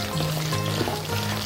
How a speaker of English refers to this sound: So now I'm going to drop my Brussels sprouts into the fryer and get that process going.